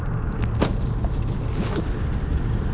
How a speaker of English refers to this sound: That would have been a good place to stop, I guess, but there is way too much goddamn traffic. And I'm going to be in this vehicle probably for a long time.